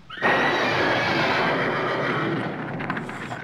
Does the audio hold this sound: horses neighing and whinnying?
yes